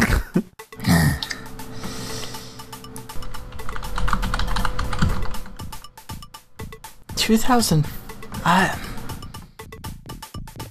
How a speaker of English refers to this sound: Tick, tick, tick, tick, tick on the keys.